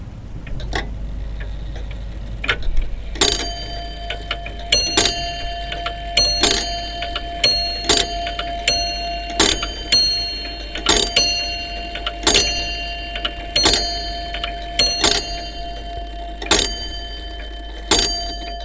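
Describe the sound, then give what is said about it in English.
Two grandfather clocks in a house tick steadily, their crisp overlapping beats forming an uneven double rhythm, with faint ringing metallic tones lingering beneath. No one speaks. “The house that keeps time with two grandfather clocks.”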